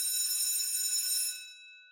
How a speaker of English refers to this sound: And that is our bell, which means we're almost out of time.